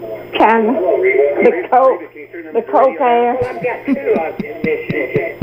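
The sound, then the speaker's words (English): A radio plays in the background, its tinny, narrow-sounding voices talking continuously over a steady low hum, with a hollow, slightly echoey quality. “can you turn the radio down?”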